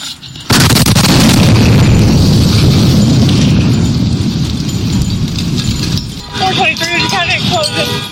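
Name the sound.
bomb explosion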